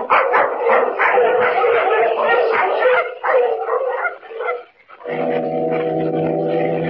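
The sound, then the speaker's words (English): A noisy pack of sled dogs barks and yips together, loud, in a dense overlapping chorus; near the end the steady droning tone of a dog horn sounds beneath the continuing yelps. “That dog horn. Last time I heard it, Kent, was over 3 years ago.”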